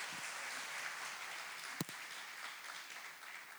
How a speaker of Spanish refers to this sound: Bueno, démosle un aplauso al Señor por ese milagro de la vida.